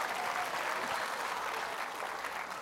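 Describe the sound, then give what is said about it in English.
Girls in the audience clap steadily, a dense wash of many hands at a constant, fairly loud level with no one speaking over it. “The girls are applauding now.”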